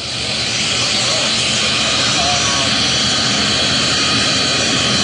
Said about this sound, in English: here comes Air Force One taxiing down the runway as we wait for President Biden to get off the plane